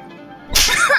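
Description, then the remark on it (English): After near silence, a single loud slap across the face cracks out abruptly, harsh, with a short noisy smear trailing after it. “You enjoy getting slapped.”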